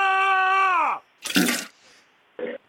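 People scream from another room: a long, high wail that slides downward, then a harsh, noisy shriek and a short final yelp, with brief pauses between.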